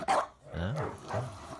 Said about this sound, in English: Oh. Yeah. Very ferocious barks. I mean, I'd be intimidated. Yeah, that's its growl, but it's very like almost wet sounding, which I hate saying, but it's just very drooly, like very moist bark.